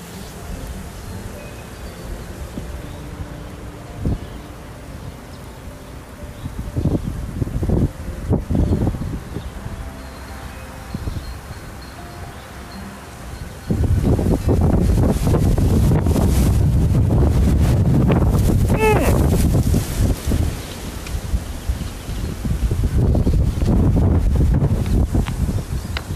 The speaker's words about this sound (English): But this wind is going to make it very challenging to do so. But we're going to try.